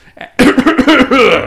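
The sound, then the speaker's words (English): A person deliberately coughs while trying to say the name of the documentary Making a Murderer: a single loud cough bursts out after a brief quiet breath, harsh and raspy with a voiced, gravelly tail that trails off over about a second. “Sorry if my cough wasn't articulate enough.”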